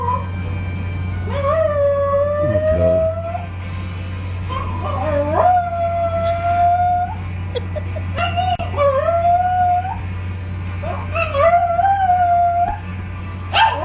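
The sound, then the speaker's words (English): A dog howls along to music in long, wavering, sing-song notes, about four drawn-out howls with brief yips between, fairly loud over a steady low background hum. “It's a dog, right? Mm-hmm. Singing.”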